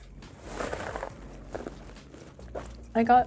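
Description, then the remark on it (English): A soft slurping sip of a mocha chip frappuccino through a straw, a breathy rush of noise lasting about half a second, followed by a few fainter sucking sounds, then a brief burst of voice at the end. “I'm gonna take a sip of my drink.”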